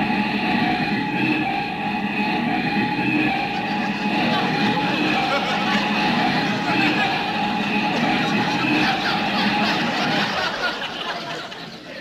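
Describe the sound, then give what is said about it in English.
A car's brakes squeal in a long, steady, high-pitched whine over loud rumbling road noise, easing off near the end as the car comes to a stop in front of a house. “Put on the brakes.”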